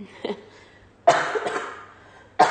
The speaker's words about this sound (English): Excuse me. Only one cough, though.